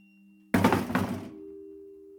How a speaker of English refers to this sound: That was until the following Wednesday, when again the chopping board, lifted by a seemingly invisible hand, once more flew off the kitchen counter and onto the floor.